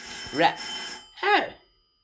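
telephone ringing

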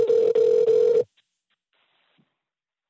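telephone ringing

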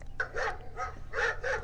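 puppy barking

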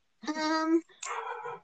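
dog barking

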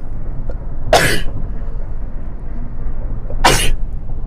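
sneeze

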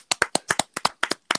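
hands clapping

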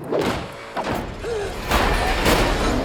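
heavy door slamming shut

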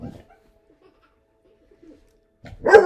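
dog howling

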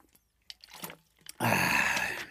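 drinking water

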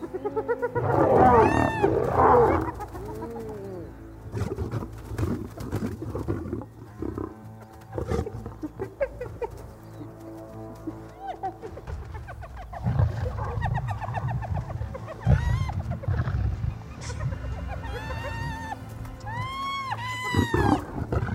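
lion roaring

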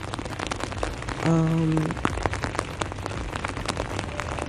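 heavy rain falling

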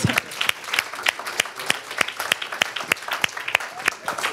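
audience clapping

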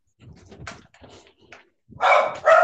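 dog barking loudly

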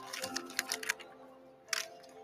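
paper being unfolded

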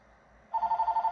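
landline telephone ringing

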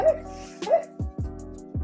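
puppy barking

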